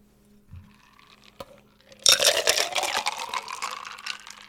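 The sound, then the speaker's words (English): A pink hurricane cocktail made with grenadine syrup is poured into a glass: after a quiet start and a small clink, a steady, splashing stream begins, its pitch gradually rising as the glass fills. No one speaks. “Let me pour it in a glass.”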